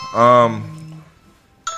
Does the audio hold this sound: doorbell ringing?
yes